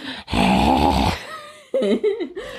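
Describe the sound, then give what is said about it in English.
A voice imitates loud, heavy breathing: a long raspy, groaning exhale, a brief pause, then a shorter wavering, voiced breath, imitating someone breathing loudly and heavily outside bedroom doors. “So Fred would also breathe loudly and heavily outside their doors.”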